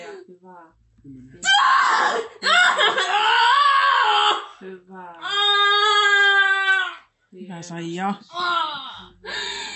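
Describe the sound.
A newborn baby wails loudly at birth, its first cry, in several strained, wavering bursts with short gasping pauses between them, while other voices in the background call out and cheer with joy.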